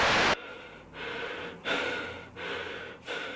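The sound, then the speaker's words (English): Heavy, rhythmic breathing in a movie, with about five loud, airy inhales and exhales in quick succession, each breath separated by a brief pause, and no talking. “But this movie has a lot of bare vision and heavy breathing.”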